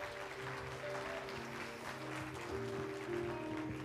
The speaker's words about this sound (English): But isn't it great to see all of our younger church members here today? Give them a round of applause today.